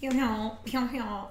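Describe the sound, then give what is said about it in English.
A woman's odd, strongly voiced sneeze, her usual way of sneezing, that comes out in two loud, tonal bursts with a singing, mid-pitched quality, sounding more like a silly vocal noise than a typical sharp sneeze. “It's how she sneezes.”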